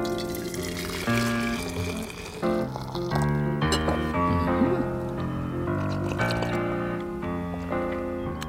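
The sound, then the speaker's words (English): Liquid pours steadily into a mug for several seconds, with a continuous gurgling, tonal quality that shifts in pitch as it fills. No one speaks. “Okay, get a mug in place. It's about to pour.”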